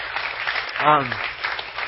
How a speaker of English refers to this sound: So can we just get a round of applause? Great job. Thank you.